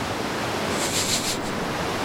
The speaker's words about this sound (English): The waves are crashing against the boat.